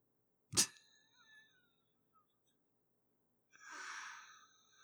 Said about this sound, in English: Kitty's trying to get away, too. You can hear she's trying to escape this story.